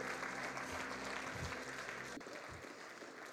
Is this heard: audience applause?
yes